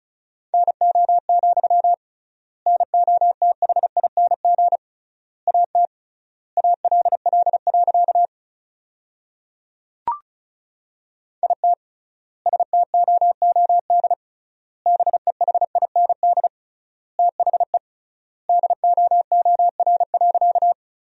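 Fast Morse code at about 35 words per minute, sending sentences made from the top 500 words with triple word spacing: a single steady mid-pitched tone keyed in rapid dots and dashes, grouped into bursts with longer pauses between words, plus one brief click partway through.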